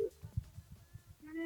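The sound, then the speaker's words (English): A telephone ringing tone on a call to the next caller: a steady electronic purr sounds briefly, pauses over soft low thumps, then starts again, moderately loud and heard down the line. “It's ringing, Benno, it's ringing.”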